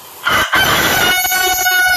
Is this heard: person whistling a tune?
no